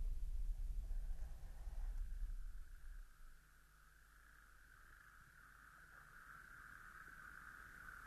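A steady chorus of toads calling from a pond at the edge of a sand dune, a continuous high trilling drone that builds slightly over time, with a low rumble fading out early on and no voices.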